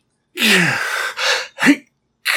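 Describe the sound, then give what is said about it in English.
A person imitating a fighter pilot's straining breath while flying: a long, forceful hissing exhale with a low grunt, then two short sharp puffs and the start of another. “And it's like, it's a very specific style of breathing.”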